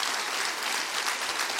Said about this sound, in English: Come on, clap your hands real big for that right now.